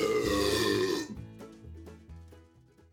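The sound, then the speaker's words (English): A loud, drawn-out belch lasting about a second, resonant, followed by a quieter stretch of trailing sounds, with no talking. “Drink yourself some Tom Sarsaparilla there, Pilgrim, and belch like a real man.”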